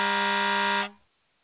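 An air horn, sounded on a call-in show to welcome a caller, gives a single loud, steady blast of just under a second, with a rich buzzy tone, then cuts off quickly into silence. No one speaks.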